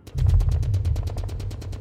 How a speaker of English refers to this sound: Hear now as salvos of bullets crack through the sky like a thousand whips lashing at the very soul of decency and order, heralding in an age where chaos walks with proud step among us and tyranny writhes like a serpent in our midst